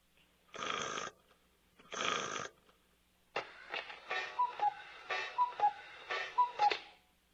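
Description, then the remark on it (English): A cuckoo clock: two short rasping bursts as it is wound, then a whirring mechanism with three evenly spaced two-note cuckoo calls, each falling in pitch, clear with no talking. “Because I heard the somebody like whining a cuckoo, and then it goes cuckoo, cuckoo, cuckoo.”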